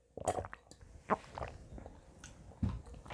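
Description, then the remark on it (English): Someone drinks water: a few wet sips and swallows spaced about a second apart, soft and intimate, with no talking. “Let me drink some water first.”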